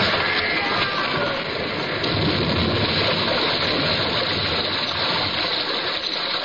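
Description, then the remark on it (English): Water gushes and roars in a loud, unbroken torrent, like a flood pouring through a breach in a ship's hull, steady for the whole stretch with no voices. “Through the breach, they heard the waters pour as mountain torrents down a flume.”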